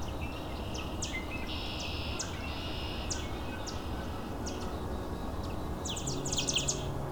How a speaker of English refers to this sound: Arguing yellow warblers.